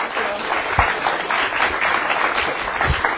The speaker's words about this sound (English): Okay, how about one more round of applause?